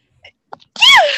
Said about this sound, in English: No, sorry, I'm gonna sneeze.